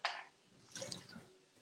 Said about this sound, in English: I'm just drinking water.